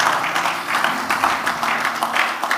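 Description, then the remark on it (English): A crowd claps together as a clap offering to God, in a dense, steady burst of applause that holds at an even, fairly loud level throughout, with no voices standing out. “Give God a clap offering, someone.”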